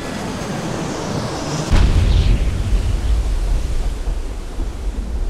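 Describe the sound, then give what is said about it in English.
A hiss of rushing noise is broken by a sudden, heavy boom as a passenger plane strikes the water in a smooth touchdown, followed by a loud, sustained low roar and churning rumble that continues to the end. “It was, all things considered, a petite, smooth touchdown.”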